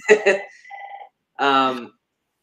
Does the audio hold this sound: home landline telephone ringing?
yes